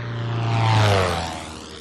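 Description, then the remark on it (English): An airplane engine drones steadily during a skydiving jump, a low propeller hum with a broad roar that swells briefly toward the middle before easing off slightly. No one speaks. “His skydiving instructor says it was bizarre jumping out of an airplane with a man who was alive before airplanes were even invented.”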